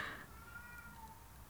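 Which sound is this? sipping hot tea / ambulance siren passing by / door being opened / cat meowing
cat meowing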